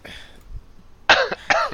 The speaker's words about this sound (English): I what? That cough.